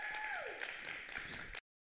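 An audience applauds in a dense, steady wash of clapping, with a high whistle-like tone sliding downward early on. The applause holds at an even level, then cuts off abruptly.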